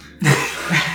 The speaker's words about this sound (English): Bless you